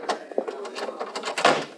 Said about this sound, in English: All right, close the door